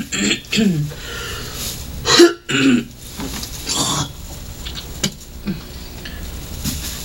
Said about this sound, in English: Can I spit in this trash can?